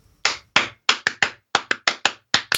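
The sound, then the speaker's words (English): About a dozen sharp hand claps in a loose, uneven rhythm, some landing in quick pairs, each a crisp, bright smack, with no talking. “You can't just clap in the middle of this.”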